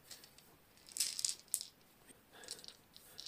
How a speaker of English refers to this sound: Yep, that box is ideal for rolling dice into as well. Perfect.